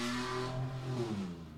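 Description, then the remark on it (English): A very loud car roars past, its engine note sweeping and shifting in pitch as it passes, with a steady, rumbling drone filling the whole moment. “Jesus, and the loudest car in the world just went by.”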